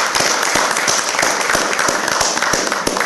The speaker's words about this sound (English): So let's applause as we make history.